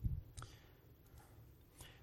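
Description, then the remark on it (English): A few faint, sharp computer mouse clicks, spaced unevenly across a couple of seconds, with a soft low thump at the start and a quiet background otherwise. No one speaks. “I don't know why it's taking three clicks for every click.”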